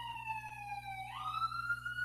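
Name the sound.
siren passing outside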